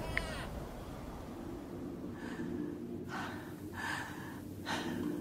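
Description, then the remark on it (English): Four faint, ragged gasping breaths from a woman come at uneven intervals over a low steady hum, with no one speaking. “Her breathing's getting fainter”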